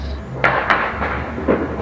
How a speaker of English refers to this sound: Listen to this. Those claps you're hearing, Rock, are gunshots.